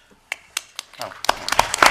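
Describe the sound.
Scattered audience clapping: a few separate, sharp claps at first, then thickening into light, uneven applause from several people, with some murmuring voices mixed in toward the end.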